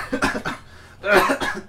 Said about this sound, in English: That sounds like the most fake cough I've ever heard. It was sort of both. Sort of fake, sort of surprise.